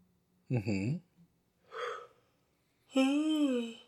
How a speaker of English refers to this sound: Oh, yeah. I hate when I have to yawn. In the middle. No. Not in the podcast. Just in general, because I don't want people to see my cavities in the back.